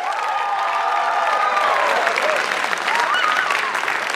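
A live crowd of UNC students breaks into sustained, loud applause, dense clapping filling the whole stretch with a few scattered voices and whoops rising over it.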